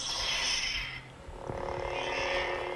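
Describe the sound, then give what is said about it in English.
A toy lightsaber switches on: a hissing electronic buzz, then a sudden snap halfway through that swells into a steady, droning hum with a bright, fizzy edge. No one speaks. “So it's got some nice sound effects.”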